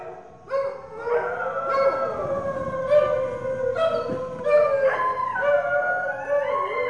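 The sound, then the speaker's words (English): Several stray dogs on the streets in India howl together in long, wavering, overlapping tones, with a few sharp yelps breaking in now and then. The chorus starts abruptly and carries on steadily and fairly loud, with no talking. “The streets here are filled with stray dogs, dusty mutts who bark and howl and get into loud, snarling fights late at night.”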